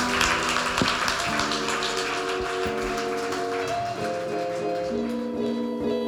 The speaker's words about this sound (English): Amen. Let's clap our hands.